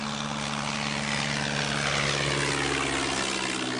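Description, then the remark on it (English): A propeller plane flying into the Hela region of Papua New Guinea's Southern Highlands province drones steadily and loudly, its engine hum thick with low tonal bands and a broad rushing wash, as if heard from inside the cabin, with no voices. “Flying into the Hela region of Papua New Guinea's southern Highlands province, the thick forest canopy below is virtually unbroken by any sort of development.”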